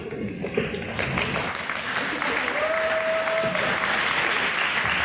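A crowd applauds steadily for about five seconds, a dense, even wash of clapping that holds its loudness throughout, with a faint sustained tone briefly audible beneath it, cued by an 'applause' sign during a staged live Christmas radio show broadcast.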